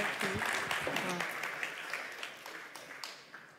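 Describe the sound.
A crowd applauds with steady, dense clapping that fades gradually, while a voice briefly calls out or cheers near the start.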